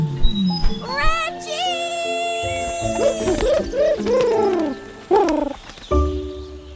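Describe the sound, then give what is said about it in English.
An ostrich squawks loudly, letting out a run of warbling, gurgling honks in quick bursts, then a couple of sharper cries near the end. “That ostrich is back, and I think he's on to us.”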